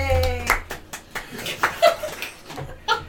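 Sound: hand clapping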